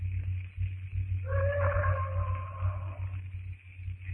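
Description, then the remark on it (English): A bull ape roars at night, miles away: a drawn-out, wavering roar rises for about two seconds, sounding distant and somewhat muffled over a steady low hum, with no talking. “That bull ape is certainly doing a lot of boasting tonight.”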